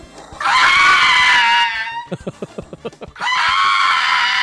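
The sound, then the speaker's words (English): A dog, not injured or in pain, screams rather than barks to get its owner's attention, in long, shrill, piercing wails, broken up in the middle by a quick run of about seven short, sharp yelps before the loud screaming resumes. “And Slim played a terrible dog screaming, not barking earlier this morning, which was horrible.”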